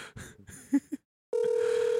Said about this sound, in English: the phone stopped ringing.